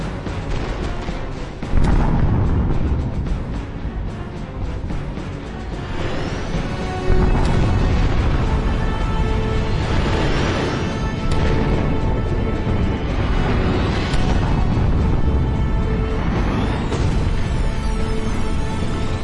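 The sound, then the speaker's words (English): Boom tubes rumble like thunder: loud, continuous deep rolling booms with repeated surging bursts and whooshing sweeps, sustained for about twenty seconds with no voices. “Boom tubes. He's right. Can you hear it? Like thunder.”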